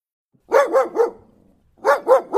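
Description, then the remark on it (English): A dog barks loudly in two quick bursts: three rapid barks, a short pause, then three more in the same rhythm, with no voices present. “Hey, dog. Do you like BarkBox?”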